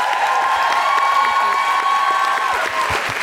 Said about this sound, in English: Big round of applause for Sabrina Mahfouz.